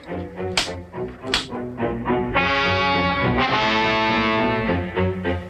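Two sharp, loud whip cracks snap in quick succession about a second apart as a rider whips a donkey to make it go faster, then give way to sustained, swelling orchestral music with no talking.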